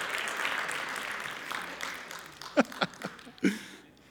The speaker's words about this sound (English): And this, yeah, you can give the Lord a good round of applause. Come on, keep clapping.